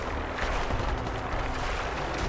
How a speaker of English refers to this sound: No one sees me yet, but of course we can hear all the gunfire.